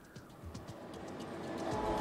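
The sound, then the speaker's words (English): A train comes up on the tracks at a destroyed-looking train station: a low rumble and broad mechanical noise build steadily louder, with rhythmic clacks and knocks mixed in. No one speaks. “Oh, you stop at a destroyed looking train station and a train comes up on the tracks.”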